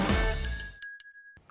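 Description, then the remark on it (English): A small metal bell hung over a door dings as the door is opened, several light, quick strikes over a bright, sustained ringing tone that fades out, following a brief low rumble at the start. “And it dings. Looks like this person has like a little like metal bell over on the door.”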